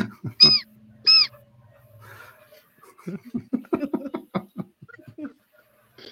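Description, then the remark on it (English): Two loud, shrill hawk cries blown on a handheld bird call, about a second apart, followed by a pause and then people talking and laughing. “I've been buying bird calls so I can sit on my front porch and call birds.”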